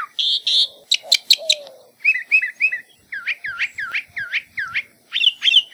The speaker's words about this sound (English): One of the most interesting things about mockingbirds is that they can learn hundreds of different songs and often mimic the sounds of other species of birds, as well as frogs, crickets, dogs, car alarms, and squeaky gates.